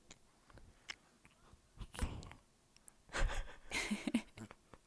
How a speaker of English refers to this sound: Now he's quiet. Oh, I'm holding him. He's happy. But he has hit 5 pounds today. So all of them are over 5 pounds, which is a huge accomplishment. That is him breathing.